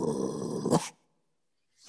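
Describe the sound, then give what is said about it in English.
A dog's rough growl with a gruff bark-like burst lasts under a second, then cuts off into silence before another faint sound begins at the very end. “Let the dogs bark.”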